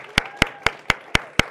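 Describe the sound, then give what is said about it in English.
Six sharp, evenly spaced hand claps in a steady beat, about four per second, over a faint background hum, like a single person starting a round of applause at a church service. “That is appropriate to applause, because she put in a lot of hard work in helping Witsit and helping these families and giving the church a really sweet opportunity to serve.”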